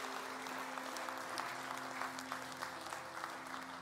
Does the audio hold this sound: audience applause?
yes